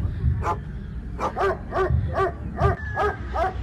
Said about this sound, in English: In the eastern region town of Enum, you may never hear the barking of a live dog. If you ever do, it may either be from your television or an audio recording.